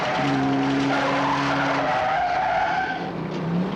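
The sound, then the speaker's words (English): Racing cars roar past with a sustained, loud screech of skidding tyres, the squeal holding steady tones before shifting and fading slightly near the end. “It suddenly has this inbuilt supercharger that can outrace the fastest and latest sports car.”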